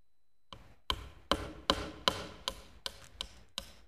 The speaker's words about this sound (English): you know, like if you're at home and you're going to like hang a heavy picture on your wall, he's going to drive a nail first just straight into the drywall. And I want you to listen to the sound.